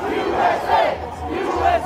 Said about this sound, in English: So we got to the east side of the Capitol, the side facing the Library of Congress, at about 10 a.m., and there was kind of a medium crowd there, and they were doing their usual chants, like Stop the Steal and USA.